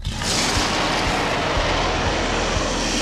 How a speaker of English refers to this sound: So once that happens and they're both out of the way, he lets out a roar.